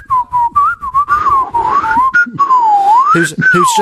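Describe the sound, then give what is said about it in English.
A voice whistles a wavering, sliding tune imitating the Swanee whistle voices of the Clangers, pitch gliding up and down, mimicking chattering speech in continuous warbling phrases, fairly loud, with faint voices murmuring near the end. “who spoke with Swanee whistle voices”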